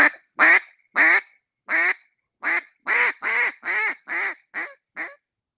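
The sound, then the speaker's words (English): A single reed duck call, an Echo XLT mid-range call, is blown with warm air. It gives a series of about eleven nasal quacks, a few spaced ones and then a quicker run that softens toward the end. Loud, with no talking. “And here, it's a single reed duck call. You just put the air in it.”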